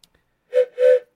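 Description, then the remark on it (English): Two short blasts of a train whistle sound effect, the second longer than the first, sounding loud with a brief gap between them and no talking. “Train's pulling into the station. The scammer call train whistle, or the scammer call train is coming around the mountain.”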